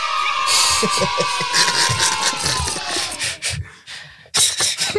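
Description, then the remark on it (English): A crowd cheers and whoops loudly and continuously, with bright high-pitched shouts and a few brief dips before the roar surges back near the end, played as a sound effect. “Give him a round of applause. Yeah. Oh, I be forgetting you have the sound thing.”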